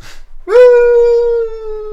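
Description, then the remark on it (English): A voice imitates the cartoon sound of Wile E. Coyote falling over the edge of a cliff in Roadrunner: one long, steady hooting tone held for about a second and a half, sagging slightly in pitch, with no talking. “It's a bit like that noise of like Roadrunner falling over the edge of the cliff.”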